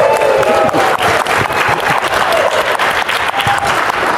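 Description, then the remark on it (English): A large live crowd at the DevConnections conference in Vegas applauds loudly and steadily, dense clapping with a few scattered whistles and cheers rising above it. “That's pretty good for a hungover crowd.”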